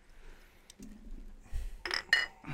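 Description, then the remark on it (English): Glasses clink together in a toast, a couple of bright, ringing taps, following a low murmur and some handling noise. “All right, so let's cheers. Try it. Oh, yeah. Cheers.”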